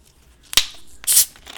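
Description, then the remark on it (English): A can of Mountain Dew Pitch Black cracks open: one sharp metallic click, a brief pause, then a short, bright hiss of escaping fizz lasting a fraction of a second. No one speaks. “With this Mountain Dew pitch black. Let me just... Sounds of freedom right here.”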